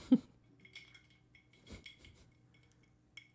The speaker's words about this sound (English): And before we dive into our main feature for tonight, I am going to drop a few ice cubes into my glass. We're going to go from neat to on the rocks.